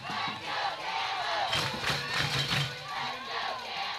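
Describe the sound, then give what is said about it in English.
A crowd of Rabbits baseball fans cheers and shouts at a game, a loud, steady roar of many voices with bursts of yelling swelling and easing over about four seconds, with no clear individual words. “Listen to those Rabbits fans.”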